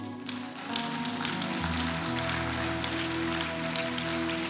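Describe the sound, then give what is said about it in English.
An audience applauds in a steady, dense patter of clapping that lasts throughout, with sustained keyboard or organ chords playing underneath. “Come on, I applaud you.”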